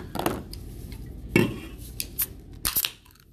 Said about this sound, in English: Speaking of chimps, let's go ahead and crack this here caffeine.